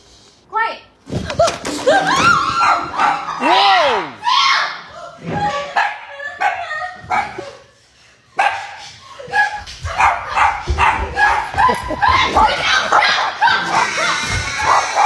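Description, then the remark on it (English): A dog barks repeatedly and loudly in excited bursts with a few yips, while people talk over the noise, one telling it to stop barking and sit. “No barking. No barking. Hey, sit. Sit.”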